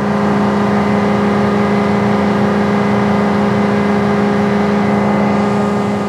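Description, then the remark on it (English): A boat's engine, running constantly to produce electricity on board in Antarctic waters, gives a loud, steady drone with a strong low hum and stable harmonic tones, without pause; no one speaks. “So the noise of the boat was a constant companion.”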